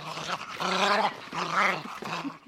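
A voice imitates a dog's growl: two drawn-out, rumbling growls, followed by a shorter final snarl, with no other talking.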